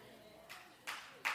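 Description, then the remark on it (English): Scattered audience clapping starts up in short bursts, three noisy swells growing slightly louder, fairly quiet, with no one speaking. “You clap for me later.”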